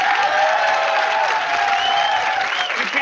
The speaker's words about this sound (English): It's time to vote now. Oh, okay. Audience, we will determine the winner by applause, okay? So really root for your favorites. Number one.